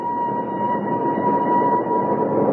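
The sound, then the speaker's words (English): A train whistle blows in one long, steady, unbroken tone over a dense low rumble of an approaching train, loud throughout. “Oh, I hope he's on this train, Uncle Flax.”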